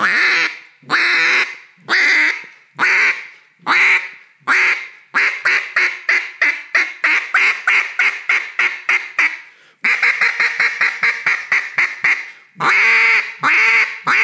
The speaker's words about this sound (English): You can trick people by, you know, especially on a short read goose call of how many notes can you get on one breath. I'm breathing after every note, but so that air gets built up.